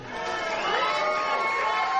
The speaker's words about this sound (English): Round of applause. Or Fernando Valenzuela. Gil Carrillo. Let him hear it, ladies and gentlemen. Let him hear it. Let him hear it.